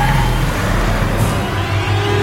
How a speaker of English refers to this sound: We've got car sounds.